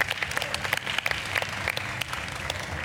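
A room full of people applauding, dense overlapping hand claps forming a steady, fairly loud wash of sound that holds throughout without any talking.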